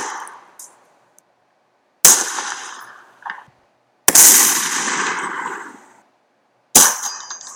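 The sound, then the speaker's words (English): Three loud pistol gunshot sound effects, spaced a couple of seconds apart, each a sharp crack with a ringing, echoing tail; the middle shot's decay lingers longest. No talking. “Is that what a 40 Smith & Wesson sounds like, though? I mean, if we're comedic gunshot sounds.”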